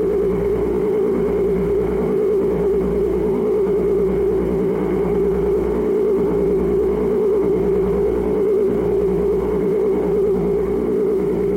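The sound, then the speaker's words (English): A steady, unbroken whining buzz from dark triangular craft with a blue light and a vent on their undersides, passing by a car at night; a droning mid-pitched hum with layered overtones that holds an even loudness throughout, with no voices. “The only sound they hear is a whining buzz.”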